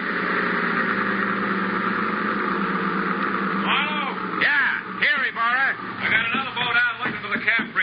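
A boat engine hums in a steady, fairly loud drone as the boat comes in, joined about halfway through by wavering, warbling calls layered over the motor noise.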